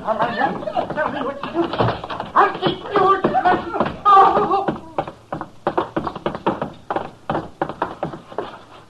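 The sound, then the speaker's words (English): A scuffle between a man and his wife breaks out with strained voices and grunts, then a rapid, uneven run of sharp thuds and blows as she knocks him out, fairly loud, tapering toward the end. “She knocked him out.”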